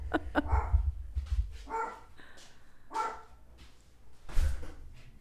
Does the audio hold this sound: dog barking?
yes